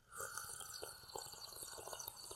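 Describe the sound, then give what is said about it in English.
A continuous wet slurping of a non-alcoholic drink lasting about two seconds, with bubbly, gurgling bursts over a steady airy hiss and no talking. “Well, I'll tell you, I don't recommend slurping that kind of liquid that way.”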